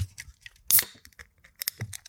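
A can of blackberry Bubbly sparkling water pops open with a sharp hiss, followed by scattered crackling fizz and small clicks over a couple of seconds, with no talking.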